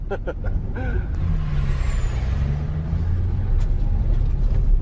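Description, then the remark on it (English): A car engine runs steadily, a loud continuous low rumble with a droning hum that holds for the whole stretch, with a few brief sharper noises near the start. “I was really hoping the car didn't stall when you did.”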